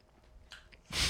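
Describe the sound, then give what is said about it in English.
Chewing of a crunchy bun: a couple of quiet bites, then a louder, sharp crunch at the end, with no talking. “the bun's crunchy on the corners.”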